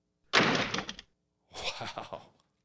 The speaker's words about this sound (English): For me, would you mind doing a door slamming wink? That's a door slam. But we put the sound in.